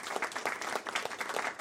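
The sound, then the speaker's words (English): A short burst of dense applause, many hands clapping together in a steady crackling wash at moderate volume, with no voices over it. “Let's get a clap for Paulie B.”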